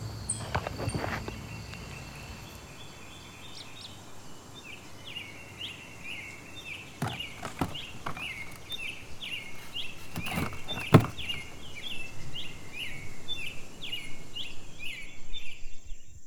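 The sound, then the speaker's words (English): Birds sing steadily in the distance just outside the town of Gibsonville, North Carolina, USA, a repeating pattern of high chirps over a soft outdoor hush, with a few knocks and rustles now and then. “Maybe the birds in the distance.”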